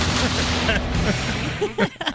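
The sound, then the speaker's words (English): A voice imitates cannon fire, producing a rough, continuous stream of noisy blasts and bursts, loud throughout, with a few sharper pops toward the end. “16 seconds of cannon fire here, I think.”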